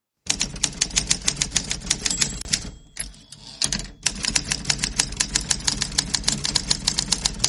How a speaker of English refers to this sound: Let's hit the typewriter and move on.